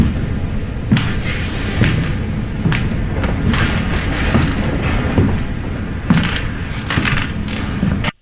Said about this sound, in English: Ooh, did you hear it? Yeah, footsteps. Footsteps, but in what room of the house? On the stairs? Maybe further up.